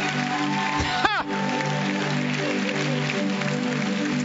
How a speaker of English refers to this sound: Woo! Come on. Don't just cheer. Get up.